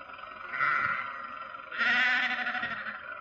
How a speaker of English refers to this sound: Confound that man with his sheep. Does he have to take up the entire road?